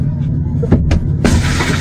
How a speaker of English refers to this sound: No, shattered his window, and that's where it cuts off. I wish there was more. But the guy gets out once he says some shit about his mother and goes over and like literally punches through his driver's side window